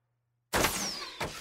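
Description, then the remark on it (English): After a brief silence, a broad rushing whoosh starts abruptly, carrying a thin high whistle that glides steadily downward in pitch, then a second short burst of noise follows. These are weapon sound effects for a big arrow attack. “All that whistling.”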